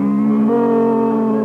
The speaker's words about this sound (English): Doggone it, we're sitting on a couple of cows.